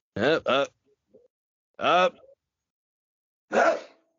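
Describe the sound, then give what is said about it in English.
A few short voiced gasps rise in pitch as someone builds up to a sneeze, then a sharp, loud, breathy sneeze bursts out at the end. “I got to sneeze again.”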